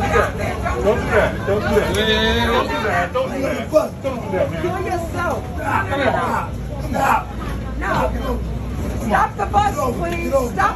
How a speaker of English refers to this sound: This is a bus, this is a New York City bus. Look at this.